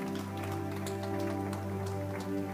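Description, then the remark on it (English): A church audience claps hands to give God a hand clap, a dense, steady patter for a few seconds, the crackle of many claps blending together over a sustained, low musical chord. “Give God a hand clap if you know.”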